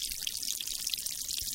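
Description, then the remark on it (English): A steady, gentle trickle of water babbles continuously, bright and bubbly with small splashes, fairly soft, with no voices. The water flows from beneath a granite boulder across a ravine on a mountain, at the spot where the Chattahoochee River begins. “We make our way across a ravine to where a steady trickle of water flows from beneath a granite boulder.”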